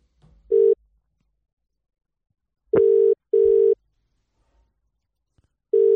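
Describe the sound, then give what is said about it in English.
A telephone ringback tone: steady mid-pitched double buzzes, two short pulses then a pause of a couple of seconds, repeating on its own with no talking. “Hopefully he picks up, though.”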